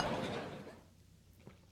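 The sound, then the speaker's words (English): Beer glasses clink together in a quick toast, a soft clattery ring that fades out, followed by near silence and one faint knock. Quiet, with no talking. “But first, cheers to you, my man. I guys keep working on this beer. Cheers.”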